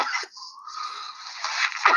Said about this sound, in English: Yeah, I mean, we got a lot of coughing in this podcast.